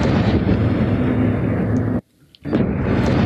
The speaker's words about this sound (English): can you sound off the cannon? Yeah, twice.